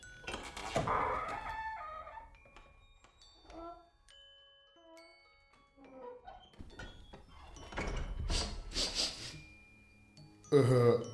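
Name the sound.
chicken clucking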